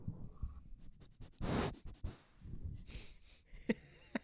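A female dog named Trouser, snuggled up right at the microphone, snuffles, licks and yawns: wet smacking clicks, a broad breathy burst, and short sniffing puffs in an irregular run, fairly loud, with no talking.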